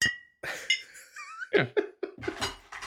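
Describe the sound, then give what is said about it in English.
Glass drink bottles clink together a few times in a cheers toast, with a bright ringing tone, followed by a couple of sharper knocks and some rustling handling noise. “Here, we can grab another one so you can make a noise.”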